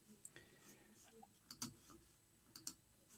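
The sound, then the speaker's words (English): A computer mouse clicks several times, crisp little taps coming singly and in quick pairs, as someone clicks to bring up comments. “I keep clicking on the wrong place to bring up these comments.”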